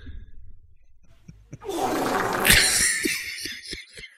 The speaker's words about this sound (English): But the funny thing of it is I actually pulled that that sound off of YouTube. It is a meme. It was titled Meme Fart Sound.